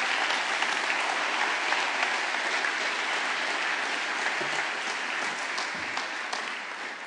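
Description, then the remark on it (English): Steady, sustained applause from an audience giving a round of applause again, a dense wash of many hands clapping at an even level for several seconds with no voices rising above it. “If you could, give them a round of applause again.”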